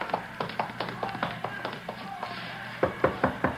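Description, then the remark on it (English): A steady series of light taps on a door at the back of a stand builds to about four sharper, louder knocks near the end, with a low background hum and no talking. “You knock on the door.”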